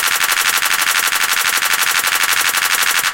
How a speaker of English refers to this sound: So it's bouncing back between the clap and that hi-hat.